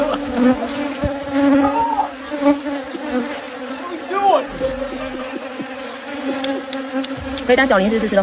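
A dense swarm of bees drones steadily, the buzzing continuous throughout, its pitch wavering as individual insects pass.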